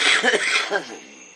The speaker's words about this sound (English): got a nice smoker's cough. I like my smoker's cough.